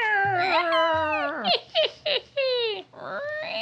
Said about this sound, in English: That's the door opening to you, our listeners.